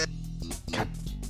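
A game-show buzzer sounds, holding a low, harsh, steady drone for over a second with a few brief noisy bursts layered on top.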